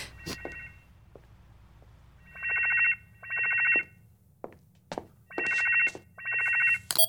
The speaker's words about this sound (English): Incoming call from Valerie. Sorry. Valerie's calling.